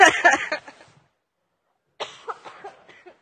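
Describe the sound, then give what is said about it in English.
A loud burst of harsh coughing, then a second of silence, followed by a softer, raspier run of coughs that trails off. “I can't laugh. I cough.”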